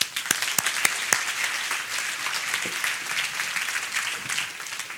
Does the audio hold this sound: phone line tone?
no